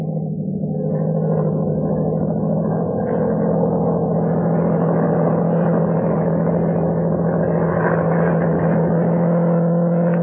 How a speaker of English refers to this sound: Low down in the south, a monoplane was climbing into the heavens. I was as certain as if I'd been told that that aeroplane was looking for me.